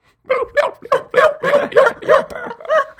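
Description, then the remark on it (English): A person vocally imitates a sea otter call: about eight quick, high-pitched squeaky yelps in a steady rhythm, fairly loud, with no other talk during the imitation. “That's an otter. That's a sea otter.”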